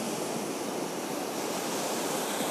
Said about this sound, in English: But later on, she came to realize that, wow, that roar that I was hearing and then the little whoosh afterwards is the ocean. That the ocean and the movement of water actually creates a roar.